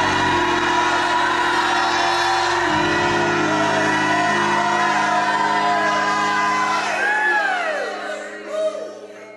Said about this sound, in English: Now if you believe it, make a joyful noise. Shout a shout like you've never shouted in your life.